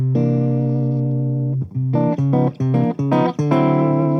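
A clean electric guitar played with the neck and bridge pickups together rings out a long sustained chord, then plays a quick series of short, choppy strummed chords, fairly loud with no talking.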